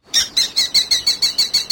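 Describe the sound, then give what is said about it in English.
A falcon gives a rapid, harsh series of about nine sharp, evenly spaced calls, loud, with no other sounds around it. “And so last but certainly not least, this show is brought to you by this week's animal ambassador, the falcon.”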